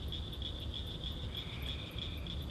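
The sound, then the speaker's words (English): A steady chorus of frogs trills outdoors at almost 11 o'clock at night, a high, continuous pulsing drone that never stops, with a low rumble of background noise underneath and no voices. “But as I sit out here and listen to the frogs, you know, make their noise in the background, I think, you know, how do I do this more often?”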